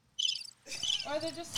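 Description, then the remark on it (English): A short burst of cricket chirping played as a sound effect, a bright, rapid trill that starts abruptly, pauses briefly, then returns fuller and busier, with other sound mixed underneath near the end. “Can I get the crickets?”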